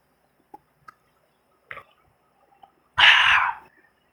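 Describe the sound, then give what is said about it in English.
Someone drinks a swig of water: a few faint wet clicks and a short gulp, followed by a loud, breathy half-second exhale. No talking. “Let me take a swig of it.”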